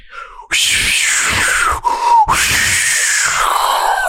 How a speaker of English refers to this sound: you were breathing as hard as you do at hockey. The wind up on that was incredible.